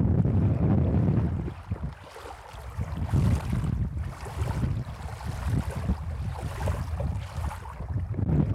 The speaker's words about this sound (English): And we have arrived at the lake. And the wind is blowing. It's quite nice out here right now. We have just arrived onto the beach. I'm going to hold the tape recorder down so you can hear the water lapping.